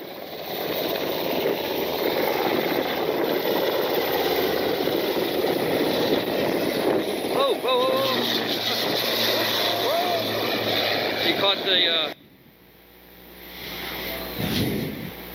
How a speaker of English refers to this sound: Again, a Black Hawk and PC-12 landing behind it. Black Hawk's taken off. There's a PC-12.